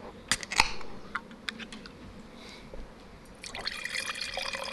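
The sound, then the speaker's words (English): A can of wine is cracked open with a couple of sharp clicks, followed after a brief pause by a steady, splashing pour of liquid. No one speaks. “Sounds like it does. A beautiful can of wine.”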